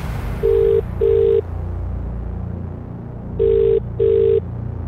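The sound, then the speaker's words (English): A phone line ringing out on an outgoing call to a mobile phone: two paired bursts of electronic ring tone, a double ring, then a pause and another double ring, clear and steady over a low background hum. “So it's like, if you pick up, you really deserve this loyalty card.”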